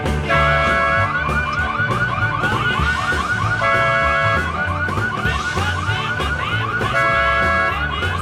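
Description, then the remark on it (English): A car alarm in a parking lot blares continuously, its warbling electronic tones cycling through repeating patterns at steady loudness, with no voices. “people lined up waiting to get into a club and they can see the parking lot from where they're lined up, and you'll start hearing a car alarm go off, and then you'll start hearing somebody being upset with someone leaning on someone else's car.”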